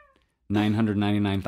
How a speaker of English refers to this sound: Okay, so besides being awakened by a million cats. A million.